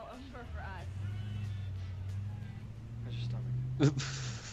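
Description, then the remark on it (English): Motorcycle engines drone steadily outside, a low continuous rumble that swells slightly as they pass, with people talking over it and a short sharp noise near the end. “Go away with them fucking motorcycles.”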